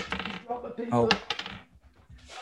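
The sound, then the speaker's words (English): Paper drops and is gathered back up, with scrappy rustling and a few sharp clattery knocks over about two seconds, then a brief pause before more shuffling. “Just drop my paper. Hold on.”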